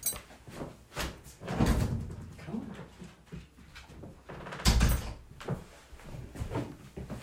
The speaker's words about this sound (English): Keep breathing as I let my dog in because she's going to scratch at the door the whole time.